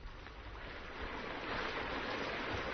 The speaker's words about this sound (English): Not that you can see much with this rain falling.